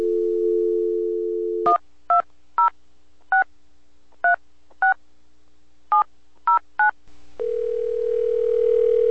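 A steady telephone dial tone hums, then cuts to a quick, uneven series of about ten touch-tone dialing beeps as a call is placed, followed by another steady phone line tone starting up. No one speaks.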